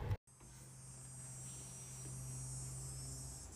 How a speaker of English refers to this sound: Can you hear that? Did you hear that cicada popping off? You know what that means. It's the end of summer.